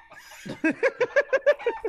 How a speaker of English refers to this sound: Why is there suddenly a bunch of chickens that are starting to swarm me now?